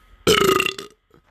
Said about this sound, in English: Those two Alka Seltzer you gave me. And I chased it with some Sprite. I had the biggest burps built up. Like, Sprite is the key. Right. To burps.